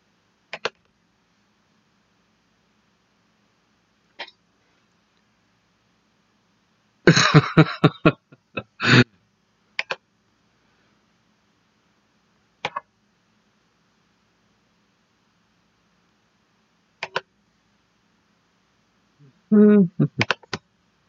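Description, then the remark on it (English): Sharp mouse or keyboard clicks as someone pulls up a soundbite file, fairly loud, come in scattered singles with long quiet gaps, plus a quick flurry of rapid clicking partway through and a short burst near the end. “Sorry for the clicking sound.”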